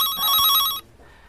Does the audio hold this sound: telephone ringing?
yes